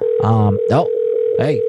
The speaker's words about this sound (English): I think that phone number is disconnected or something. I just copied and pasted the number that you gave us, so it's like I didn't like mistype it or anything.